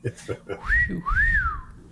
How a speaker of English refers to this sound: It's impossible to whistle when you smile. Go ahead, whistle a little.